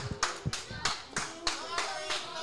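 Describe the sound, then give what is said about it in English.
Steady, rhythmic hand clapping with sharp, bright slaps about three per second, several pairs of hands blending into a continuous applause texture with a faint murmur of voices underneath. “Thank you for clapping.”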